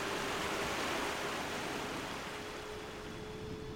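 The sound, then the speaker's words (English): Muddy water rushes into an underground vault to fill a gap, a steady, dense, loud roar with a faint hum running beneath it; the surge eases slightly toward the end without stopping. “Then Gordon was purring through and into the vault itself as muddy water rushed in to fill the gap.”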